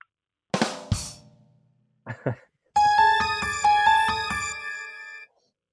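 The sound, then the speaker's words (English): A soundboard sound effect: two loud, brassy goose-like honks blare in quick succession, followed by a couple of short squawks and then a bright electronic jingle of repeating tones, with no one talking. “That sounds like goose or something.”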